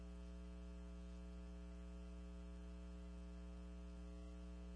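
A steady, low electrical hum with stacked harmonics drones continuously under a faint wash of hiss, like a dead phone line with static and nothing else on it.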